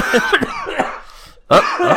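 A person coughs several times: a rough cluster of hacking coughs, a brief lull, then a louder, harsher cough burst that trails off.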